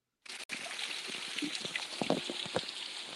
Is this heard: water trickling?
yes